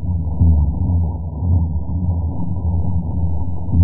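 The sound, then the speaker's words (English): A loud underwater chorus of spawning fish, reaching 165 decibels and lasting six to 10 hours every night of the spawning season: dense, overlapping low booms merge into a steady, droning rumble with a throbbing, engine-like texture that never lets up. No voices. “with 165 decibel sounds, lasts for six to 10 hours during the spawning season every night for months.”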